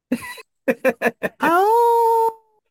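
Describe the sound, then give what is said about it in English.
Someone imitates a wolf, giving four or five quick yipping barks before a single drawn-out howl that rises, holds steady, then fades, loud. “Are you trying to sound like a wolf?”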